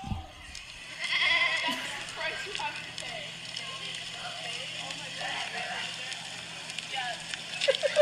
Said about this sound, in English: There's so many goats.